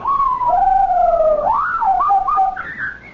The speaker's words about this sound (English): Whatever is that? It's Napoleon. He's telling me, you've been back home for an hour, why don't you uncover me? I'll take its cover off. I never heard a parrot make a sound like that before.